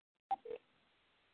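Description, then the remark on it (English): Two quick keypad tones from a landline house phone as someone dials, each a short steady beep of a different pitch, followed by a faint line hiss. “Okay, I'm trying her on the house phone.”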